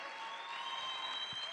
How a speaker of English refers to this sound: You're going to clap your hands until electricity begins to flow from you.